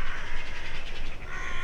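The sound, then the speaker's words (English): A jackdaw calls with a quick run of sharp, harsh 'chack' notes, loud, repeating steadily without pause. No one speaks. “our common crow, and also the jackdaw with its sort of jacking sound that you can hear.”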